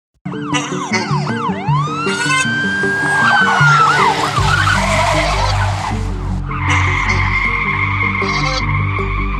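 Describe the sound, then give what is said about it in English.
A bus screeches up with loud skidding tires and wailing, siren-like tones, then settles into a heavy, low engine rumble, idling. “And it's time for the clowns to bring up the short bus.”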